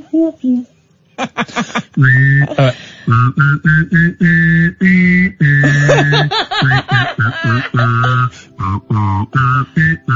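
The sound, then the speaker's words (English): Someone whistles and hums at the same time in an owl impression: a run of short, hooting bursts with a high whistled tone riding over a low hum, pausing briefly between notes. “You're doing an owl impression.”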